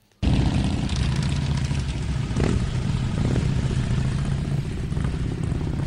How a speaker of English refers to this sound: Hey, what's that? It looks like cars and trucks full of wasteland warriors.